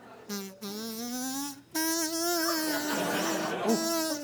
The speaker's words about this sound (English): Is that Julius? No, it's a regular bee, but I'm super allergic.